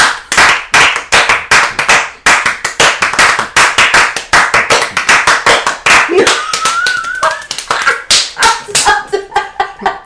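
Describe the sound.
Loud, rapid hand clapping in a fast, steady rhythm fills the whole stretch, sharp slaps repeating many times a second, with a brief whistle-like tone and voices faintly mixed in toward the end.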